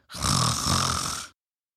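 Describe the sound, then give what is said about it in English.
One loud, rasping snore from someone who has just fallen asleep rumbles for just over a second, a throaty vibrating breath that swells, holds, and cuts off into silence. Isolated, with no talking. “Peter slipped into sleep and started snoring.”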